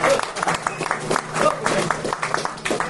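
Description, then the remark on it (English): A room full of people applauds Peter Buckley Hill, a dense, steady wash of many hands clapping at once, fairly loud, with a few faint voices mixed into the crowd noise. “I think a big round of applause, Mr.”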